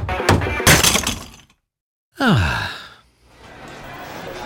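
A hammer smashes something in a burst of loud, crunching, shattering blows. After a brief silence comes a sliding, downward-falling tone, then a low steady hiss.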